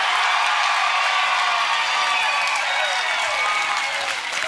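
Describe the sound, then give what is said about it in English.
An audience at the Opera House claps and cheers for a team in a steady, dense roar of applause with scattered shouts, holding loud and unbroken for several seconds before easing slightly at the end. “Are you all cheering at the same decibel level for both of us?”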